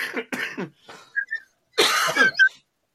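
A couple of sharp, harsh coughs, a brief pause with small throat sounds, then a louder, longer raspy cough with a strained, wheezy edge, at the end of a show as it wraps up.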